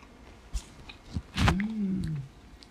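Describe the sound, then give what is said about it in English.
Close-up crunchy chewing of granola cereal eaten from a bowl: a few sharp, crackly bites spaced apart, followed by a drawn-out murmured hum over the munching. “Let's try it. Let's see. Not too much chewing.”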